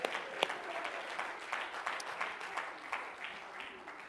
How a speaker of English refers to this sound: Well, let's clap our hands and praise him again today.